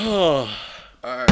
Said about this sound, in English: Yeah, you're slamming the drink down like you slammed your Timbs on the coffee table.